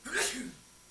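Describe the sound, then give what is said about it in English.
A single sharp sneeze bursts out, a breathy hiss with a short voiced edge, lasting about half a second before quiet returns. “I'm glad the lights were gone because we might have had to start all over after that sneeze.”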